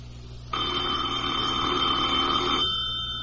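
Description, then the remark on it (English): A single long telephone ring, steady and buzzy, sounds for about two seconds against a quiet background before cutting off. “Yes, operator, please keep ringing.”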